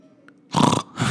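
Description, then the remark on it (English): A person imitates a horse snorting as in a war or a race: two loud, breathy bursts of noise. The first lasts about a quarter second and the second follows after a short gap, with no speech. “Like, it's like when a horse would snort in a war or a race.”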